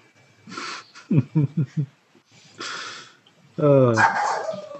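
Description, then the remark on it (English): A half-bald dog shooting down the stairs barks in a quick run of four or five sharp, yippy barks, pauses with some breathy rustling, then lets out a louder, drawn-out whining bark. “Yes, a half bald dog shoots down the stairs.”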